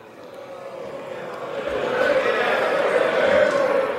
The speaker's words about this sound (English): Everybody's booing.